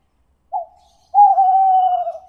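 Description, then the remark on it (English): The bird Gooby laughs with a chirping call before flying away: one short clear note, a brief pause, then a longer sustained, slightly wavering chirping call that trails off, with no voices around it. “Gooby laughs and flies away.”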